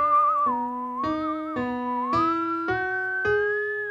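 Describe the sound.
Someone whistles a smooth, gliding melody with a wavering vibrato, imitating a theremin, over steady organ-like chords that change roughly every half second.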